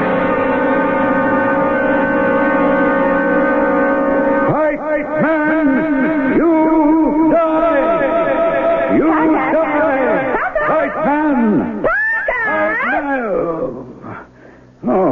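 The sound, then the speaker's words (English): Loud, continuous warbling tones with heavy reverb from a tape deck, pitch bending and smearing into long echoing trails for about fifteen seconds, with no one speaking. “Oh, just fussing around with the tape deck. Pretty near got it all set up now. That was the reverb you were hearing.”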